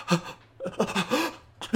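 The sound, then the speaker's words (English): A voice performs a theatrical, exaggerated gasp, a sharp breathy intake followed by a drawn-out, wavering vocal gasp and a final quick breath, imitating a dramatic anime-style reaction. Fairly loud. “No one's gasping like that.”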